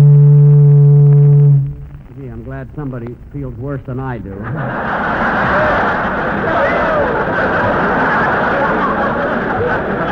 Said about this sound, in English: That's a boat whistle.